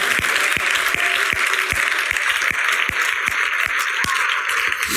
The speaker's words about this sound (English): Now put your hands together and give God a hand clap of praise.